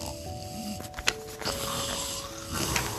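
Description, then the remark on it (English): Snoring rumbles along steadily, a raspy, droning breath sound with a few sharper snorts and clicks mixed in, fairly loud and with no talking over it. “He snores.”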